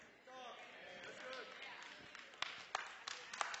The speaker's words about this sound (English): Thank you for those three separated claps.